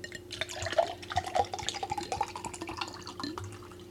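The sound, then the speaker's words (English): Sherry is poured into a glass for a guest, a steady trickling, gurgling stream lasting about four seconds over a faint low hum, with no voices. “Let me first, before you even talk, let me get you some sherry.”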